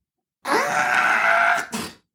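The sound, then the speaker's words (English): A voice imitates the buildup to a sneeze: one long, strained, drawn-out vocal tone held steadily for over a second, then a brief breathy burst as it cuts off. “The buildup is like a...”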